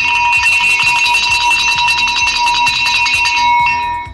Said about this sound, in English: Before we start the show, let the bell give the ring.